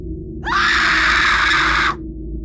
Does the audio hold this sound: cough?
no